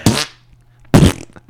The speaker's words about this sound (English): Dude, we all love farts. No matter how dark the world is. It's really funny when you add them into things.